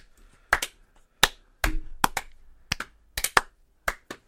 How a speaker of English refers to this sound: Clap, everybody. Slow clap.